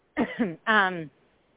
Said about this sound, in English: Excuse me, I have a quick cough.